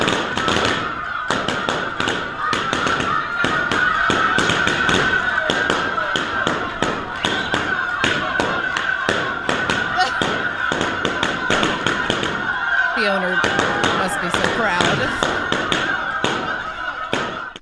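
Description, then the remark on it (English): A dog popping 100 balloons in a new world record: a rapid, irregular barrage of sharp, loud pops, dozens in quick succession, over a steady background hum with faint squawking-like noises partway through. “Maybe it was like chickens in the background freaking out because the dog was popping balloons.”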